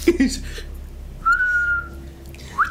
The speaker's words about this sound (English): I'd imagine it's something like this. Shit my pants. I can't even whistle. That was pathetic.